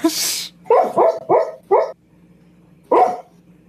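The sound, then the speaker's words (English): A person imitates a dog barking at a dreaming dog: four quick, sharp barks in a row, a short pause, then one more bark, all fairly loud after a brief burst of noise. “She's dreaming about the mother dog, so I was barking at her.”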